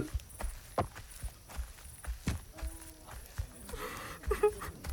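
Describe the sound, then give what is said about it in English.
Hooves of Shiloh, a mare, clop along a long trail at a slow, uneven walking pace, each sharp knock distinct, while faint murmuring voices of townspeople gathered at a cemetery rise faintly underneath toward the end. “Yep, I know, but at least there'll be water and hay for you.”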